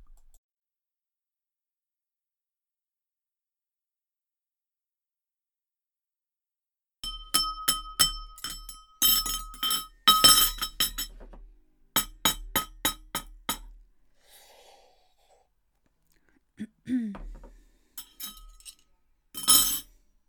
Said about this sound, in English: So after finishing my meal at the Duke of Gloucester and trying not to drop my knife and fork on the floor and my glass, holding it in my hand